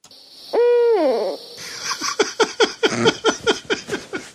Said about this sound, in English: You think you're so special with your Captain Scarlet owl noise.